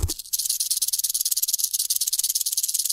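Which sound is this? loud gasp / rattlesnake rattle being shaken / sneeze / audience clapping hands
rattlesnake rattle being shaken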